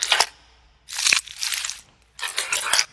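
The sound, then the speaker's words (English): Three bursts of bright, splashy water noise from a water sample layered in a music production mix, one short and two longer, each hissy and crackling with sharp transient clicks, separated by brief silences and with no voices. “Let's see, there's definitely water in here.”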